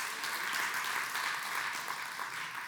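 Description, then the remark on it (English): A crowd claps steadily, a dense wash of many hands applauding at an even, fairly loud level for a few seconds with no voices over it. “Y'all are clapping, but you're going to have to do some difficult things.”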